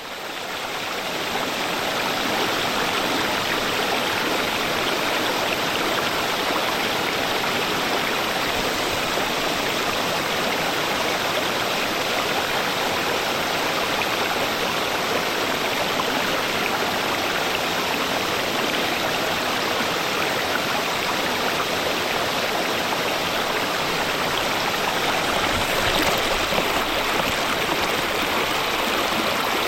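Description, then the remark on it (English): A steady, full rush of flowing water from a stream below a waterfall at Hinckley Park in South Portland, constant with broad splashing texture and no pauses for the whole half minute. “This one I recorded at a stream below a waterfall at Hinckley Park in South Portland.”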